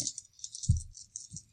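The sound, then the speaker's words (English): Dice rattle and clatter across a hard surface for a rapport roll in a game, a quick burst of clicking with a couple of low thuds as they tumble and settle, fairly quiet with no talking. “Give me a rapport roll.”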